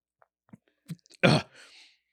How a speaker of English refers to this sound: There's a lot of chewing going on over there. Sorry, I'm sorry.